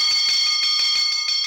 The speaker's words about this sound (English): You know, teacher says every time a bell rings... Never mind. Nothing stirs my imagination like an incomprehensibly high-pitched percussive instrument.